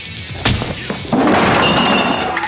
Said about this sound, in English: So Noel does. Punches him right in the face.